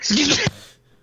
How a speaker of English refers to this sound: I was going to say excuse me, and then I sneezed right away. I felt it coming, and it came faster than I expected.